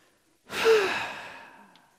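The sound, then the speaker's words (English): A single long, breathy exhale like a deep sigh, clear, swelling quickly then fading out over about a second with nothing else around it, from a person taking a big, deep breath while resting in a chair. “Use nice chair and with big, deep breathing, you know.”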